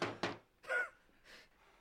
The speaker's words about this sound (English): Him breathing, knocking.